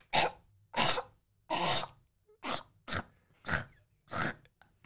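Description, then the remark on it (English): A series of harsh, hacking coughs in quick repeated bursts, like a cat trying to bring up a furball, with someone coughing up a furball: about eight spasms spaced evenly, with no talking. “That's him coughing up a furball.”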